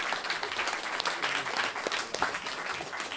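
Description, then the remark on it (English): A crowd at a storytelling event applauds steadily after a story about birds, many hands clapping in a dense, continuous patter that holds at an even level throughout, with no voices rising above it. “Round of applause”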